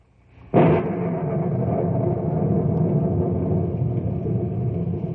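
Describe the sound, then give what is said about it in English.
A sudden loud thunderclap from gigantic thunderheads with lightning over knotty pine country cracks open, then rolls into a deep, sustained rumble that lingers heavily for several seconds without fading much. “Gigantic thunderheads are passing over the knotty pine country, and the monsters lash out with angry streaks of lightning.”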